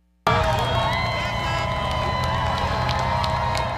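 Thousands of Texas Longhorn fans at UT cheer and shout continuously, sending off the team to the Sugar Bowl in New Orleans, a dense roar of many voices with scattered whistles and higher-pitched yells rising above it, starting abruptly and staying loud throughout.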